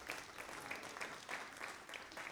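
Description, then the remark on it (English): A crowd gives a clap offering to the Lord, with dense, continuous applause and faint rhythmic peaks roughly every third of a second, as if many hands fall into a loose shared beat. No one speaks. “Let's give the Lord one more clap offering if you would.”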